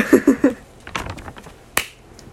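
A quick run of three soft, rapid claps, then a few scattered sharper claps after short pauses, with no talking.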